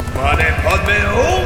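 Horse hooves clip-clop in a fast, steady rhythm, loud, with a wavering higher-pitched sound drifting over the beat.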